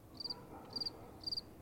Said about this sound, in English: Crickets.